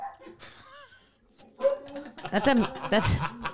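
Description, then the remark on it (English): A man, a comic at an open mic in Silver Lake, imitates a dog, letting out a few loud barking yelps in quick succession after a quieter stretch of murmured talk and faint laughter. “Look at him barking.”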